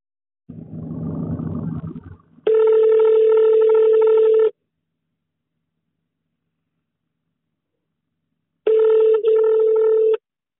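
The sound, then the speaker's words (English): A brief rustly noise, then the ringing tone of a phone call placed from England: two long, steady electronic buzzes about two seconds each, separated by a long silence, loud as if through a handset. “So this is my final call that I took.”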